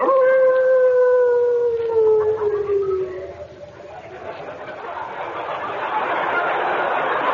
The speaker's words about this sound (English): Boy, that night wind is sure chilly. Sure is.